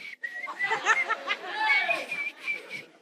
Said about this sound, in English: They come with their Porsche. My God. And they will be whistling.